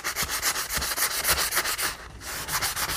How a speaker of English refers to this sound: Maybe I need a tougher sanding block. Whoops, oh man, there's dust everywhere. This is a very dusty process.